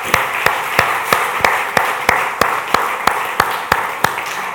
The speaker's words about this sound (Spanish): Dale un aplauso al Señor, por favor.